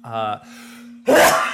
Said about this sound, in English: is that coughing in there? Oh, wow.